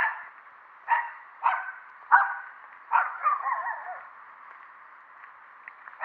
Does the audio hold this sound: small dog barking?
yes